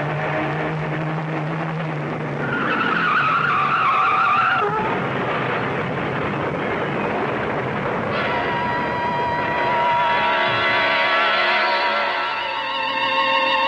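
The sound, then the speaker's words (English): A car engine roars as tires squeal in a long, loud skid, the screeching pitch sliding and wavering, then a second harsh skid follows as the car swerves off the road to avoid a truck. No one speaks. “A truck. Turn the wheel. Go off the road.”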